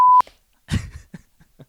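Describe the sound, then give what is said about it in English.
A steady mid-pitched censor bleep tone lasting about a fifth of a second, followed by a sharp click and then muffled, indistinct speech fragments and thumps. “Now I gotta bleep out.”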